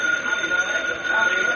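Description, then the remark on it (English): An old telephone rings in the city room of the Daily Sentinel newspaper, with a steady, unbroken electric buzz-like tone that holds for the whole moment over a constant wash of background hiss. “A short time later, Britt Reed, young publisher of the Daily Sentinel, was in the city room when the phone rang.”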